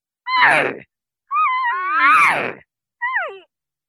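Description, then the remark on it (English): A person imitates a cow elk's estrus call, the call of cow elk in heat: three whiny, nasal mews, the middle one long and wavering before sliding down, the last short and falling, with brief silences between. “I can also do an estrus call, which is when the cow elk are in heat.”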